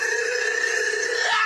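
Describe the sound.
A person lets out a loud, sustained howl, holding one steady, strained pitch for over a second with a slight rise near the end. No talking alongside it.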